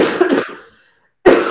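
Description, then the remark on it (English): Two harsh coughs separated by a brief silence, the first trailing off with a breathy rasp before a second loud burst cuts in. “I thought I was done coughing.”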